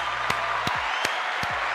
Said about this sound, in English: Clapping for you. Let's clap for this one. Love it. Clapping for you.